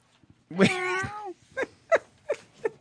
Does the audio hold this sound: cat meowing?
yes